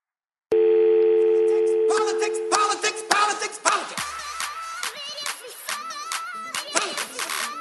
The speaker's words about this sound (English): If you'd like to be alerted when a new Speaker is named by text, please enter your phone number after the beep.